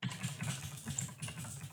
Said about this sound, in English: Oh, somebody's. Damn, that boy's typing away.